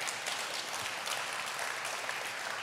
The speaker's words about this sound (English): Amen. Just as, amen, you can clap.